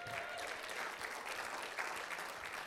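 Steady audience applause fills the space, a dense wash of many hands clapping at once, fairly distant and even in loudness throughout, with no voices standing out.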